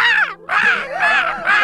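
A crow caws loudly, giving a quick run of about four harsh, raspy calls with a brief pause after the first; no one speaks.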